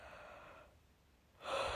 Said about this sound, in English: If I would stop yawning, dude.